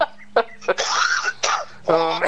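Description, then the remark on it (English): A series of harsh, hacking coughs, a couple of short sharp bursts followed by longer raspy, strained ones, with throat-clearing sounds and no speech. “You're making me cough.”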